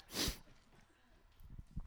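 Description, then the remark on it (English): A single loud sneeze bursts out at the start, sharp and airy, followed by quieter shuffling breaths and faint low murmurs. “I have some cool trivia about God bless you, by the way, on a sneeze.”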